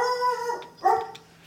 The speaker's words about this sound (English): Hey, puppies, what's going on out there?